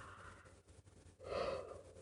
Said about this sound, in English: Sorry, y'all. I've been up with a baby. She's got asthma and we've been up a lot, so I keep yawning. I must need some water. I apologize for yawning. Excuse me.